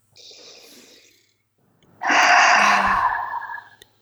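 A soft, airy inhale is followed after a short pause by a long, louder, breathy exhale, a deliberate deep breath taken during a tapping exercise, with no talking.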